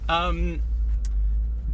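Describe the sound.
Steady, low rumble of engine and road noise from inside a moving car going around in a circle because there is no left turn, continuous throughout, with a brief voiced sound from someone at the very start.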